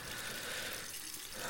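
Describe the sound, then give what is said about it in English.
Water runs steadily from a sink tap as someone splashes it on their face, a continuous hiss of splashing with no pauses or voices. “Splash a little more on the face.”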